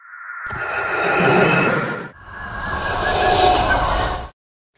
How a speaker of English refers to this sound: So there's a similar sound, a springy reverb, reverse echo effect that's being used possibly on the same sound effect that you hear when the wind rushes out of that chasm on the Death Star 2